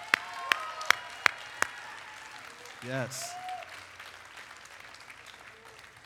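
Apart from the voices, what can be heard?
audience applauding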